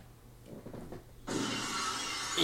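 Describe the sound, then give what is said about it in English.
A brief rumble gives way to a sudden loud crash of glass shattering, followed by a sustained bright, noisy burst of wrestling entrance music. “You hear the glass and you're like, somebody's getting hit with a stunner.”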